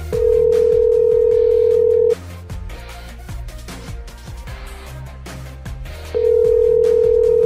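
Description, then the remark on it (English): A ringback tone on an outgoing phone call to a video editor: two long, steady electronic buzzes separated by a few seconds of pause, loud, with rhythmic background music running underneath. “How many times is it going to ring?”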